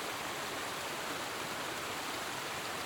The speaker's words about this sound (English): Seems the harder I listen, the louder the water thunders by, drowning her out. And every time I see her, the river is wider and she's further away on the other side.